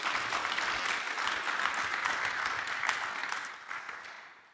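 A crowd applauds with dense, steady clapping that holds at a fairly even level, then thins and fades out over the last half second. No one speaks.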